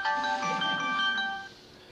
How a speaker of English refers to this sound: isn't that awful, the preacher's phone.